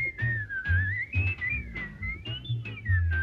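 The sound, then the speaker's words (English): Someone whistles a smooth, wavering melody, loud, with the tune gliding up and down over a steady, pulsing low rhythmic backing. “including whistles that your high school track coach favored when he was in a bad mood, and that guy up the street who can whistle like nobody's business.”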